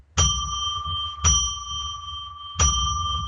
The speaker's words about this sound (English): So let me ring a bell three times to declare sacred space, meaning that, you know, no more selling, right?